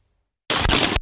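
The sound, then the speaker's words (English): After a moment of silence, loud, harsh gunfire erupts, a rapid, distorted burst of shots that clips and rings out, broken by a brief gap before another crack, on police body camera footage in Farmington, northern New Mexico, as a police sergeant is shot while responding to the scene. “You're going to hear a lot of gunfire, and this shows the moment that a police sergeant in northern New Mexico was shot after responding to the scene.”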